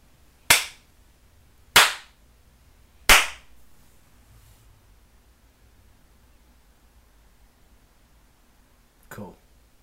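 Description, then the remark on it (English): Three loud, sharp hand slaps land at a steady pace about a second apart, followed by several seconds of near quiet and a softer brief rustle near the end. “Yeah, three slaps.”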